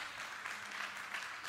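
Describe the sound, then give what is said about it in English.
A crowd claps together as a hand clap of praise to the Lord, a steady, dense burst of applause, many hands overlapping into a bright, continuous wash of sound with no voices standing out. “Could we give the Lord one more hand clap of praise?”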